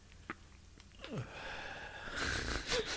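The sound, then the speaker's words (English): A heavy, drawn-out exhale, breathy and slightly wheezy, growing louder and rougher toward the end, with no talking. “What are you breathing out?”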